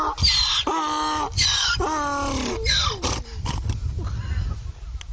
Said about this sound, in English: So now that we've heard the jackass right there, that donkey was laughing. It wasn't laughing at you. It was laughing with you.